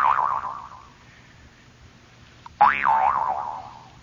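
Two twanging boings from a Hogan twanger, a novelty twanger, as it is being tuned up; each a wobbling, mid-pitched tone that warbles up and down and fades out over a second or two, with a short pause between them.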